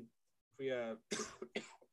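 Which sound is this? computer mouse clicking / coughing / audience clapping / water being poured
coughing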